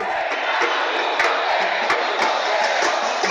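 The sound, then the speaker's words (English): A large street protest crowd in Brazil roars and shouts together in a dense, continuous wall of voices, with sharp bursts and claps cutting through now and then, loud. “More than 1 million demonstrators rallied in about 100 cities to condemn the deteriorating quality of public services.”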